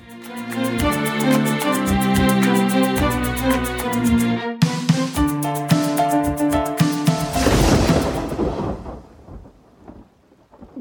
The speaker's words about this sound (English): Gunshot? No, it's just thunder.